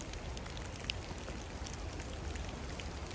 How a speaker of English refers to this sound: Why record in the rain and the misery?